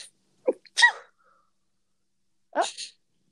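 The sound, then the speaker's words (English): A person sneezes twice, fairly loud, each a sharp inhale-and-burst, with a short quiet gap between them and no talking. “So if you hear me sneeze, I'm sorry.”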